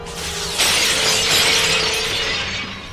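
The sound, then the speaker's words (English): Glass shatters with a loud, sudden crash after a brief low hum, followed by a bright spray of tinkling shards that lingers for a couple of seconds before thinning out. “This shatter thing is so dumb.”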